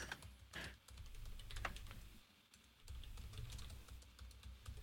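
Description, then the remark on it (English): Rapid typing on a computer keyboard while someone looks something up online, a steady flurry of crisp key clicks with a brief pause in the middle, heard alone without any talking. “Somebody say something so I don't have to edit out the silence. I'm typing.”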